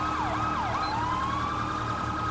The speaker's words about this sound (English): At least he's running a different siren than us, but I hate that they run the fucking phaser.